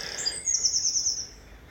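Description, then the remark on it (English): A bird calls with a high, bright trill that rises into a sustained warbling phrase, clear over a quiet background, with no voices. “I would speak about birds in the meditation, and there she goes again.”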